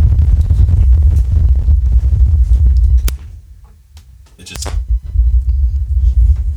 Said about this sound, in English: It sounded like a storm came through my microphone. It was really weird. It sounded like it was going to thunderstorm. It's fine now.